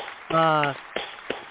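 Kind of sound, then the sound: crowd, hands clapping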